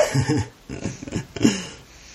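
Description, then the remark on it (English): A dog whimpers and makes short, whiny vocal noises in a few bursts, moderately loud, with brief pauses between them. “Sadie, hush. Hey, podcast puppy,”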